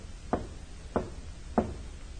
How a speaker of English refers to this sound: A man steps out and walks to a side door of one of the buildings. He knocks, pauses, then knocks again.